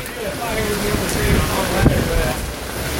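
A steady, heavy roar of wind and rain on a main street in Lakeland fills the scene, with low gusty rumbling buffeting the microphone and a brief stronger surge of wind near the middle.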